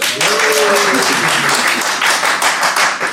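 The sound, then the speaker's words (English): An audience bursts into sustained, loud applause to vote for volleyball as the better origin story in a quiz round, dense overlapping claps filling the whole stretch, with a few voices calling out briefly near the start. “if you think volleyball was a better origin story, applaud now.”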